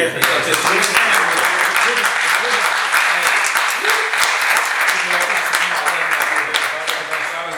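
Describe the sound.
A crowd breaks into steady applause, dense overlapping claps sustained at a fairly loud, even level for several seconds, with a few voices murmuring faintly beneath.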